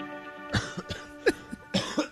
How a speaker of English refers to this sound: Today's cough report. Guys, it's going to be a long day. Today's coughing report.